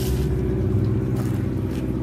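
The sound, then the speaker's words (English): Airplane engines revving: a steady, loud engine drone with a deep rumbling low end and layered harmonic hum, holding constant without a break and with no voices. “Planes are here. I guess they're revving up our wind brooms.”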